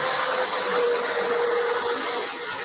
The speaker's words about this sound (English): The very big truck going by his window. Yes, they love 92nd Street on Sunday night.